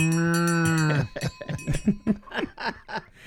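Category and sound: animal, cow mooing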